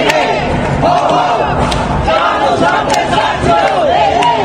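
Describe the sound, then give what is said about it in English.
A dense crowd protesting President Trump's emergency declaration on front steps, where Congresswoman Maxine Waters spoke, shouts and yells over one another amid counter-protesters, loud and continuous, with raised voices rising in overlapping bursts of angry protest chanting throughout. “Maxine Waters, Congresswoman Maxine Waters, made an appearance to speak to the crowd, and it got pretty heated with some counter-protesters.”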